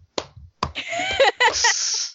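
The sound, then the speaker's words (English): Two sharp hand claps ring out, followed by a dense, sustained wash of noisy sound with some voice-like tones, lasting around a second and a half. “I hear that clapping.”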